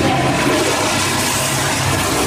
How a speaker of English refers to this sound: She doesn't know what's going to happen when she flushes that toilet.